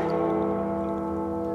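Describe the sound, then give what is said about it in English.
A bell rings out across Bells Beach with a loud, sustained, resonant tone that hangs steadily in the air without fading, with no voices over it. “This eerily rings out across Bell's.”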